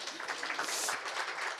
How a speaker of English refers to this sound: She's terrified. Give her a clap.